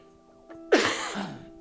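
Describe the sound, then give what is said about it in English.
A single harsh, rasping smoker's cough bursts out, loud and chesty, trailing into a rough wheezy rattle with no talking around it. “And that's a smoker's cough.”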